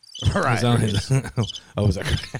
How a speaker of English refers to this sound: My very own show, and I'm starting out with crickets. Those are American crickets. They were made in America. They're American crickets. I can hear by the way they tweak.